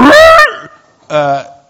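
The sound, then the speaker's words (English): A person vocally imitates an elephant's trumpet with two loud, brassy, honking blasts: the first rises sharply in pitch, then a short pause before a second, lower, steadier blare. “What's an elephant noise?”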